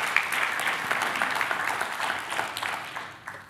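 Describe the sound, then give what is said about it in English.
An audience of rescue mission supporters gives itself a hand, applauding steadily for a few seconds, many hands clapping in a dense, even wash that stays fairly loud before tapering slightly at the end. “So give yourselves a hand clap for that.”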